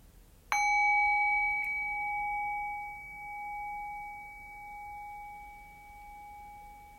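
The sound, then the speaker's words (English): A single meditation bell is struck once, its clear, pure tone ringing out and slowly fading with a gentle wavering pulse, sustaining alone for several seconds with no voices. “And so the invitation then will be to rest your awareness on the sound of the bell, allowing the decay of the bell to guide your awareness into silence.”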